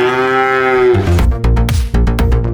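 A single loud, drawn-out cow moo, slightly falling in pitch, lasting about a second before punchy rhythmic music with percussive hits takes over.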